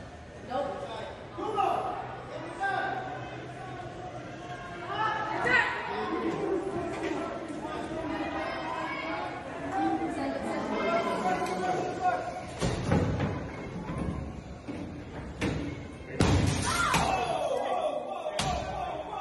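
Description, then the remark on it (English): A crowd of protesters murmurs and shouts for several seconds, then windows outside an event venue at UC Davis are smashed: four or five loud, sharp crashing blows, irregularly spaced, cutting through the ongoing crowd noise. “Listening along, that's windows being smashed from the mostly peaceful protesters.”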